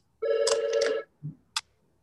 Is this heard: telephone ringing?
yes